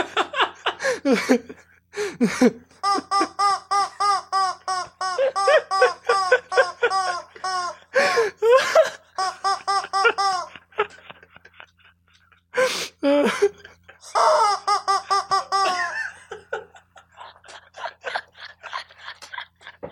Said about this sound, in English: So obviously, I've retrieved a rubber chicken.